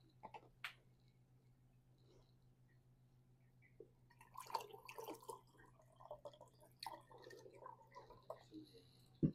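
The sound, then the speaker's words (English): Water drips and splashes in irregular, scattered drops, quiet, with a busier patch in the middle, all over a steady low electrical hum, as newly blessed holy water is sprinkled for a blessing. “This time we're going to sprinkle the water over the altar, over the doorways, over you, and bless you with the newly blessed holy water.”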